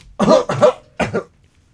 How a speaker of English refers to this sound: Oh, hold on. I got to clear my throat. I got to clear my throat again.